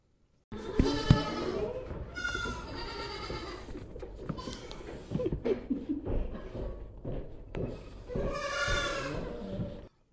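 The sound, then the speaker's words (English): Several goats bleat in close succession, loud, with harmonic cries repeating over about ten seconds amid shuffling and faint background voices, at a goat yoga session at Smithshire Farm in Skagit County. “Oh my god, goats are so cute.”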